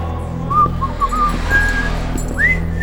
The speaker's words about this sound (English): Would you please not whistle that song?